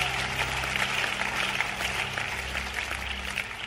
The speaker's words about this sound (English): Somebody give a big clap offering to Jesus.